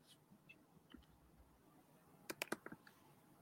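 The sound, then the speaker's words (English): A short burst of computer keyboard typing as a name is typed in: five or six quick, sharp key clicks following a stretch of near-silence with faint scattered ticks and no voices. “Literally typing in Ben Wallace as you said that.”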